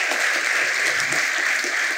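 An audience at a church service applauds steadily for the people watching online through social media, a dense wash of many hands clapping at an even, fairly loud level throughout, with no pauses and no voices standing out.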